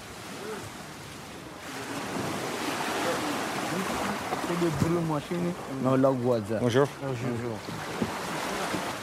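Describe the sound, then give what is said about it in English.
Water laps and sloshes steadily around a small fishing boat about 18 feet long, used to smuggle migrants from Africa into the EU, at a beach; a continuous wash with some wind, while voices talk briefly in the background partway through. “Getting into a small boat, a small fishing boat, which is probably about 18 feet long.”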